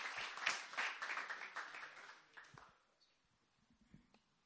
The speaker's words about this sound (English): So, yeah, why don't you give him a proper clap